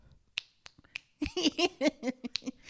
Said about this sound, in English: And her two snaps leads into my two snaps, because my two snaps came. Wait, when, is it two snaps or claps? Because I've been saying claps. Okay. Listen, it's a snap and a clap.